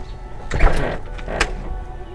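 A house door swings shut with a dull thud and a brief mechanical rattle, followed by a softer latch click a moment later, as a man walks into the house and closes it.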